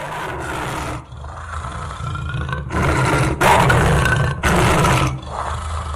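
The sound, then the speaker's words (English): A lion roars loudly, a deep rumbling growl that swells in several heavy bursts over a few seconds, with no voices. “Behold, the Lion. The Lion.”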